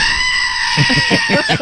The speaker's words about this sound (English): Don't scream today. It is Friday. I know, but I still had that one more, waking up day to get through. Well, that's so true. It made me scream just a little bit.